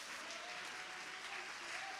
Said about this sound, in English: Oh, I wish somebody would clap your hands and give God a little praise in this house.